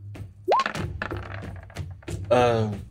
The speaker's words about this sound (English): Oh my god, I'm having to roll so many dice for this manticore.